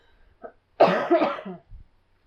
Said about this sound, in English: I think there's some kind of pattern for you when the podcast microphones go to turn on, you just start coughing automatically. Stop it.